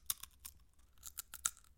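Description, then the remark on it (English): Crisps from a bowl crunching in front of a microphone in a quick irregular series of sharp, crackly bites, about seven brittle snaps with faint rustling between them, fairly quiet and with no talking. “I've got a whole bowl of crisps here and I haven't eaten one because of the microphone. Are you worried about crunching?”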